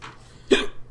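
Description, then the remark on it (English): A single sharp hiccup pops out abruptly, a short voiced gulp with a breathy edge, set against a quiet background with no talking. “Apparently I have the hiccups now, so that's another thing we gotta deal with.”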